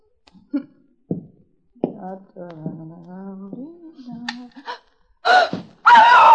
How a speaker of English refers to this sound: Why did she scream? Well, who wouldn't?